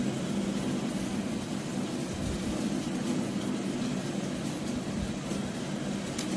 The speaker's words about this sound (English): Ah, these amazing rain sounds.